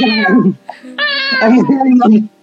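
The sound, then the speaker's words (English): A voice imitates several cats wailing: a drawn-out, wavering yowl, a short pause, then a longer, louder moaning cry that bends up and down in pitch. “Okay, anyways, so after a significantly long time, several cats make wailing noises.”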